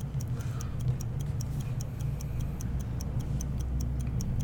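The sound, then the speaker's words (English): A timer ticks quickly and steadily, its sharp, light clicks coming at an even, brisk pace over a constant low hum. No one speaks. “Oh, that timer's going pretty quick.”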